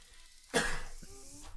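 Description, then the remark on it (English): A sudden, harsh cough bursts out after a brief quiet, followed by a rougher throat-clearing rasp that trails off, with no talking. “Just press the cough button.”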